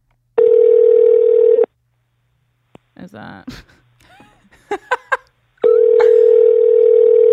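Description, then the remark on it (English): Two long, steady ringback tones from an outgoing phone call, loud, separated by a gap where a person speaks quietly and a few clicks occur. “The ringing scares me.”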